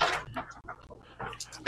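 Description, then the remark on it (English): A little dog barks outside in a few sharp, irregular bursts, one at the start and a quick cluster near the end, fairly loud against a quiet background. “I wonder if there's a neighbor I know that's out there with this dog cutting up like that.”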